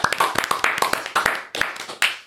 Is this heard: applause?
yes